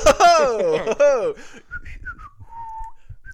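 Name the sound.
whistling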